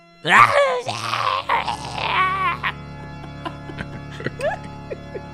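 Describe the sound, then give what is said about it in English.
A voice imitates yelling with a few loud, drawn-out wavering cries in the first two seconds, then quieter scattered squeaky sounds over a steady low hum. “You need to make a yelling noise for us.”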